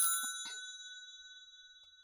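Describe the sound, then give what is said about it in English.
A phone rings with a bright, bell-like chime whose steady tones slowly fade, a few soft clicks early on, then the next ring begins sharply at the end. “Okay, whose phone is that?”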